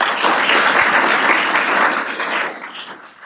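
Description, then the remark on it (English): An applause sound effect: a crowd's applause, a dense steady wash of many hands clapping, loud at first and then thinning out and fading toward the end. “Okay, activate applause, turn down.”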